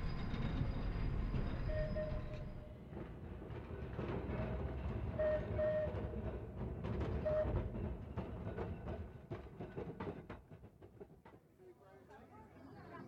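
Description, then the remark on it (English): A tram rumbles steadily along its rails, fairly loud, with thin metallic whines and scattered clacks from the wheels, easing off near the end as muffled voices murmur underneath. “We got off the tram and he asked if I'd had breakfast.”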